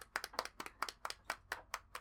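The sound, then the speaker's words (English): A steady run of sharp hand claps, about a dozen in two seconds, first in quick pairs and then in even single beats, with no voices. “Our clap is like...”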